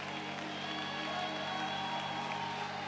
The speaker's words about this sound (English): Is anybody ready for the next level? If you are, clap your hands, stomp your feet, shout unto God.